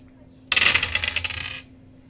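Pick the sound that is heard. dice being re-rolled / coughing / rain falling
dice being re-rolled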